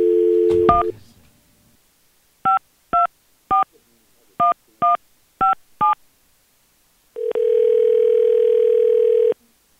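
Radio show hosts dial a telephone to call a woman: a short opening tone gives way to seven quick touch-tone beeps in an uneven rhythm, then a steady droning dial tone holds for about two seconds before cutting off.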